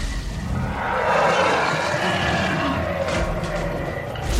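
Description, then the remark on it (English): A long, loud T-Rex roar rumbles on for several seconds, rough and sustained at a steady intensity, with no voices over it, as the T-Rex chases two people into the woods. “The two took off into the woods, the T-Rex roaring behind them.”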